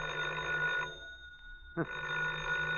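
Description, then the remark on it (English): A telephone bell rings, a loud, steady trill that breaks off for a moment of near silence and then starts ringing again. “Oh, the phone again.”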